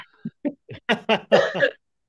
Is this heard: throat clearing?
yes